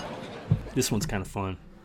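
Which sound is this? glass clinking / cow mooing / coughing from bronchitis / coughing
glass clinking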